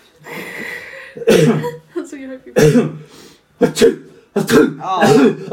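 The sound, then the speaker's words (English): A person puts on an exaggerated, uncontrollable coughing and sneezing fit after a fine greyish powder is sprinkled on them in a tabletop role-playing game, with four or five loud, harsh bursts in quick succession separated by wheezy breaths and strained vocal noises. “You start sneezing and coughing uncontrollably.”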